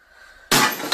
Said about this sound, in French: Le bol de toilette a éclaté. Ouais, ben c'est ça. Comment tu peux être assez épais de mettre un lancer un pétard à mèche dans un bol de toilette? Voir qu'est-ce qui va arriver. Ben, le bol a éclaté.